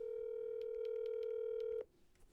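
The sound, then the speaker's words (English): A steady electronic phone ringing tone holds for nearly two seconds, then cuts off abruptly, leaving a quiet line with faint ticks. It is clear and sits alone without any voices. “Ringing.”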